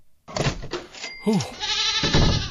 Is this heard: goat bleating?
yes